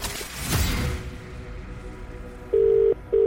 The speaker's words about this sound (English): One ring. Two rings.